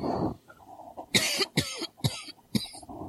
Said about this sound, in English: I'm about to get over it. I have to cough here. Sorry, guys.